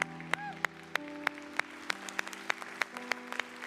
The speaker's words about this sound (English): Let's give the Lord a hand clap of praise this morning.